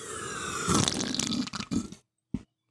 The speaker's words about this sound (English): Before we go to yield, … has redeemed the hydrate, and he requests a big slurp